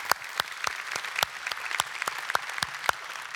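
An audience applauds steadily, a dense wash of clapping with sharper individual claps cutting through at a fairly even rhythm, moderately loud and sustained throughout with no talking.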